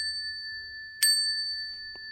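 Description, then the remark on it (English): A small bell dings twice to mark correct quiz answers: a bright, loud strike followed about a second later by a softer one, its clear metallic ring sustaining throughout, with no voices. “I've got a bell now.”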